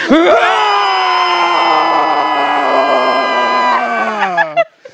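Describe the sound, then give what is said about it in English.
After a 3, 2, 1 countdown, several people scream together at full voice, a loud sustained shared yell lasting about four seconds before trailing off into a few breathy gasps near the end. “We're gonna let it out. Like an actual scream.”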